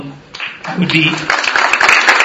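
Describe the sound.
Audience applause thanking a panel breaks out, a dense patter of many hands clapping that swells and holds steady, mixed with a speaking voice over the top.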